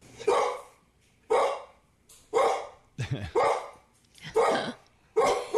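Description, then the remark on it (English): A dog barks repeatedly at a pineapple: six sharp, loud barks spaced about a second apart, with a low rumbling growl mixed in midway through. “That was the intense growl, too.”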